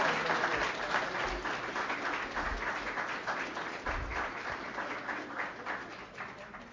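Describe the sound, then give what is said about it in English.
An audience applauds the panelists at the end of a panel discussion, a dense, steady patter of many hands clapping at once that holds fairly even for several seconds before easing slightly toward the end. “Can we have one more round of applause?”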